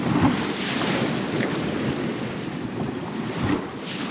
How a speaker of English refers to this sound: Every night my family falls asleep to the sound of waves breaking on the shore. When we hear the water gather, lift, slosh, and churn, it's as if our beds are turning into beaches.